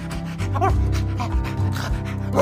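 A dog pants rapidly, with a few short barks breaking through over a steady low background hum.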